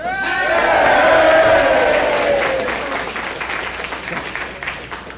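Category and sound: crowd, crowd cheering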